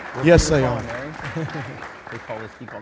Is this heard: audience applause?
yes